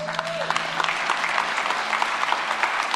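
A large crowd applauds steadily, dense clapping filling the space at a fairly loud, even level with no pauses, a faint tone briefly audible at the very start.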